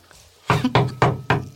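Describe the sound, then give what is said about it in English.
Four firm knocks on a door in a steady, evenly spaced rhythm, fairly loud, following a brief quiet moment, with no voices present. “we need a door knock sound.”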